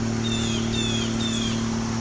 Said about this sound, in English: Blue jays.